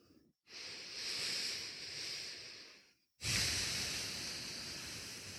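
Two long, deep breaths taken during a mindful breathing relaxation exercise, each a steady airy rush lasting a few seconds, separated by a brief silent pause; the second breath starts louder and gradually fades.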